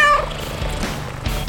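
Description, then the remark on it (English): A single loud, short, bright meow from Bucky, the cat star of Life with Bucky, at the very start, followed by a low rumbling background hum with no talking. “Now the star of Life with Bucky, her royal Buckiness, the world's most amazing cat, Bucky.”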